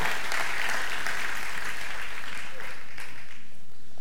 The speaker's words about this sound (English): If you believe those prayers this morning, give God a great big hand clap of praise today. Amen and amen.